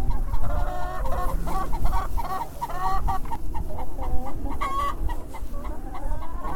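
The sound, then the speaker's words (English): A hen cackles loudly and repeatedly in rapid, rhythmic bursts after laying an egg, with other chickens clucking and a steady low farmyard rumble underneath. No one speaks. “That cackle there means that one laid a egg.”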